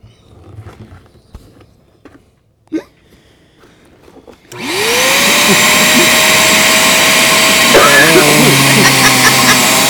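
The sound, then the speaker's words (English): After a few quiet seconds of faint shuffling and a soft bump, a vacuum cleaner switches on with a rising whine and keeps roaring loudly and steadily until the end as someone uses it to clean. “Don't touch his vacuum.”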